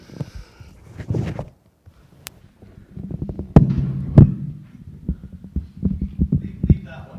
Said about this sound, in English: And most recently, they said that I need a mechanical heart valve, so that's why that's always booming. I can't usually wear lav mics, because that's always the sound in the background.